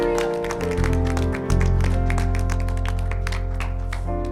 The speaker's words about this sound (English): Would you give God the greatest hand clap of praise? And let's worship today. Amen.